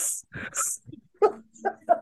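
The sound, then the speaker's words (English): A person imitates the heavy, labored panting of a man doggy paddling while swimming: a few harsh, hissing breaths followed by short voiced gasping grunts in quick succession, fairly loud. “Dude, he was doggy paddling and just breathing like this.”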